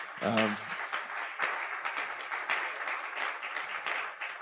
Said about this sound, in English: I also want to honor my wife and my two boys who I love very, very much. You can give them a big round of applause, too. That'd be all right.